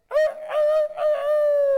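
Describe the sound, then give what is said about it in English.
A person imitates a rooster crow: a loud, nasal vocal call with a few quick broken syllables rising into one long held note, performed alone with no talking. “Anybody, who's got a good rooster calling?”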